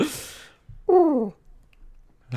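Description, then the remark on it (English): A person imitates a pigeon's coo with one short, falling, throaty note, clear, set between brief breathy noises with no talking. “Did you like my pigeon cooing?”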